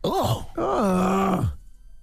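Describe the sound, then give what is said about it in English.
A man lets out a loud, strained grunt: a short rising-and-falling burst, then a longer, sustained voiced groan that drops off abruptly, followed by quiet. “That grunt was like, what you know that?”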